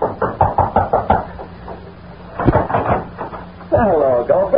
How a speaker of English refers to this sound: Then, after waiting a few moments longer, he approached and rapped on the door.